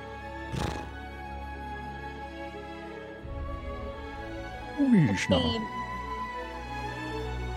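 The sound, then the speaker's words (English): A person imitates a horse's whinny with a brief, wavering vocal neigh, fairly loud, framed by a couple of sharp breathy bursts over a low steady background hum. “Right, so that is what horses do.”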